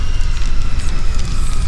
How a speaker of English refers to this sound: The flames danced around me in shifting colors of yellow and red. One after another, the blades of fire cut me down, but by some cruel fate, I did not perish.